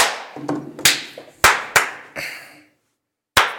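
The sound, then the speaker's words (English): A series of sharp hand claps at irregular intervals, each with a brief ringing tail, then a moment of silence before one last loud clap, made to sync the start of a recording. No one speaks. “Recording. Clap.”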